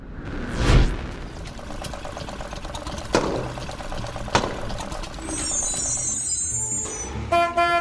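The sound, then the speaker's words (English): A vintage grand tour bus's engine rumbles and chugs steadily after a whooshing arrival, with a few sharp clanks, then the bus horn toots in two quick, bright blasts at the end. “Oh, Kitty, I'm back with your grand tour bus.”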